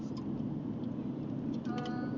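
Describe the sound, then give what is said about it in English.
A steady, fairly loud low rumble of road traffic as a car drives by, about to cut off the speaker's vehicle, with a brief higher tonal whine near the end. No one speaks. “I was talking to this car that was going to cut me off.”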